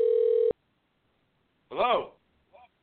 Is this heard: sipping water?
no